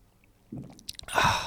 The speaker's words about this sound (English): I gotta take a sip because I just cheersed and didn't sip yet.